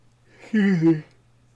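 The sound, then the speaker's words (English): A single drawn-out yawn with a voiced, wavering groan, fairly loud, lasting about half a second before fading into quiet with a faint steady hum underneath. “I always yawn in the middle of this podcast.”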